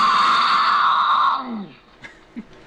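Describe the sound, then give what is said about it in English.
A female mountain lion in heat screams once, a loud, harsh, sustained shriek lasting about a second and a half before trailing off into a lower falling moan, followed by a couple of faint short noises. “He says the most misunderstood sound is the infamous mountain lion scream.”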